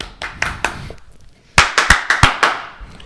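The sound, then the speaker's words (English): Hand claps in an uneven burst applauding Colorado quarterback Steven Montez for becoming the school's all-time touchdown leader: a few softer claps, a brief pause, then a louder run of about eight sharp claps, as if from one person or a small group, with no talking. “So, applaud him for that.”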